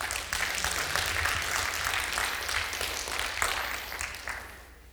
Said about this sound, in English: Come on, can you give him a good round of applause?